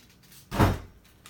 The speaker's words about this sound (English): Door closing.